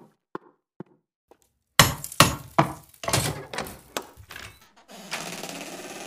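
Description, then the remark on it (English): A hammer strikes a stuck metal door bolt: a few faint taps, then a rapid, irregular run of loud knocks, ending in a sustained scraping rattle. “I found a hammer.”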